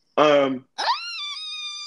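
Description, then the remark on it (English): A short voiced shout leads into a loud, high-pitched joyful scream that climbs sharply in pitch and then holds a steady, piercing note for over a second. “I'm sorry, I scream a lot.”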